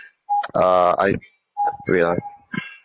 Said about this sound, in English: Sorry, my cuckoo clock.